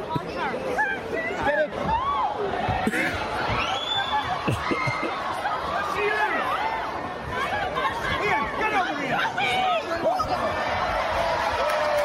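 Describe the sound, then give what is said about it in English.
A large crowd roars and cheers loudly and continuously, many voices overlapping into a dense, sustained wall of noise with scattered shouts and laughter rising above it. “That's shut your probably the loudest cheer of the night.”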